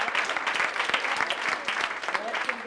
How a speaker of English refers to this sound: Go ahead and clap for the Lord right now. Thank the Lord for that. That's a good place to clap your hand.